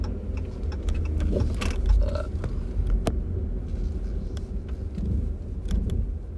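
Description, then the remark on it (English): A car engine runs with a steady low rumble, broken by irregular sharp ticks and knocks that make it sound rough and faulty. It's continuous, with no voices. “My guy, it sounds like my car. Something's wrong with my car.”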